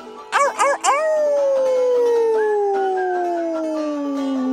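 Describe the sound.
A wolf howls: three quick rising yelps, then one long, loud, sustained howl that slowly slides downward in pitch and holds steady to the end, alone without any talking.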